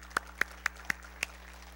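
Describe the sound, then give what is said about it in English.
Five sharp, separate hand claps at an even, unhurried pace over a low steady hum, a thin and sparse bit of applause rather than a full round from a crowd, given to thank military veterans standing in the audience. “All right, that I realize that was weak, but I do want you to know that, I mean, not the clapping, I mean just my effort, but I do want you to know that that is something that we greatly do appreciate.”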